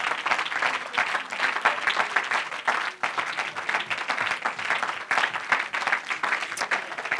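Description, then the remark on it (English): An audience applauding together as a hand clap of praise to the Lord, a dense, sustained burst of many hands clapping at once that fills the room steadily for several seconds with no voices rising above it. “And why don't you give the Lord one more great hand clap for praise?”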